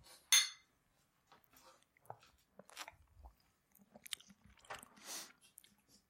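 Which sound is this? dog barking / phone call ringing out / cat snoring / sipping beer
sipping beer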